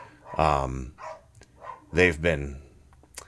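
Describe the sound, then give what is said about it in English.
The neighbor's dogs bark a handful of times, two long, loud, harmonic barks standing out among a few softer, shorter ones, with brief pauses between them. “Say hello to the neighbor's dogs.”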